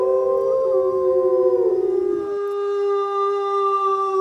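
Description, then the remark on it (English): A gray wolf howls in one long, sustained, wavering tone that holds steady and loud, with a rougher, breathy layer underneath for the first couple of seconds before it thins to a clear pure note. “A new gray wolf pack has been found 200 miles south of California's nearest known pack.”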